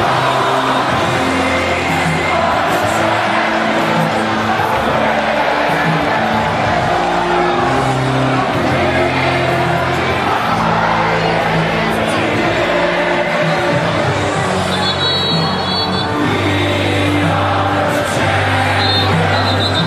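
A huge stadium crowd sings together in a loud, sustained roar, the massed voices carrying a slow melody in long held notes over a constant wash of crowd noise.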